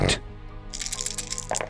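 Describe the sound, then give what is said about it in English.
Dice rattle and clatter across a hard surface in a quick, uneven run of small clicks lasting about a second, following a short low thump at the start. “Wow, I rolled really low.”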